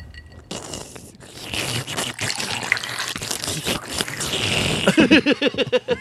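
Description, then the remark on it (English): A drink being poured: a steady, hissing splash for several seconds, ending in a quick series of rising, gurgling glugs as the vessel fills. No talking. “I love a good pour.”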